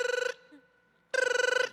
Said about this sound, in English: Yo, check it. The phone is ringing.